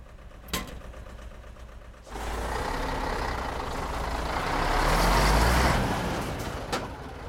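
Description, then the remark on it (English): A heavy truck engine, with a calf loaded on the truck, starts up after a sharp clunk and rumbles steadily, swelling louder for a few seconds before easing off, with another knock near the end and no voices. “I have the calf on the truck.”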